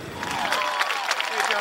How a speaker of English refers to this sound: With his wife Kitty at his side, Dukakis walked from his statehouse office across Beacon Street to Boston Common, where thousands of cheering supporters greeted him at a noontime rally.